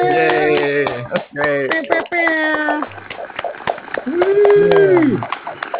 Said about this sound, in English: Let's give a clap at you.